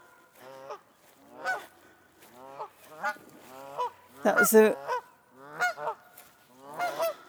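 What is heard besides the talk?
goose honking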